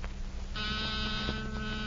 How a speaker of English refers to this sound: That's nothing but a small buzzer and battery set. An ordinary door buzzer.